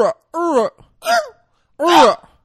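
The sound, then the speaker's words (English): A voice imitates a velociraptor's squawk in four harsh, pitch-bending cries with brief gaps between them. The last cry is the loudest and raspiest, and no words are spoken. “It sounded like a raptor.”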